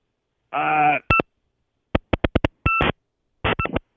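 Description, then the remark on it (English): A harsh buzzing burst, then a choppy series of short electronic bleeps and clicks with dual-pitched tones, like noisy interference breaking up a phone line during a call, loud with gaps between. “But how could your phone line get in the way of your phone call?”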